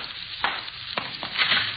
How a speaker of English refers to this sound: Water's running someplace. Wait a minute. Yeah. Sounds like it's come from over there.